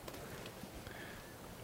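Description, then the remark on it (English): Soft, steady scratchy brushing on a horse in a video game, with a few faint hoof-like clops and a thin tone rising briefly in the background. Quiet, with no talking. “And then I will brush the horse.”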